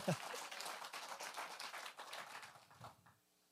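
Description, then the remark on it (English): A church audience claps together, a dense, steady patter of many hands lasting about three seconds before quickly dying away into quiet. “It's awkward when only one claps. You should join in.”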